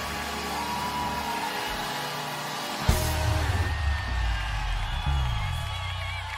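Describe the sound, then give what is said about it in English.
An audience shouts and cheers wildly in a sustained, loud roar of many voices, with scattered whoops and a sharp thump partway through, continuing unbroken to the end. “I release the fans to go wild. I need somebody to lift your voice.”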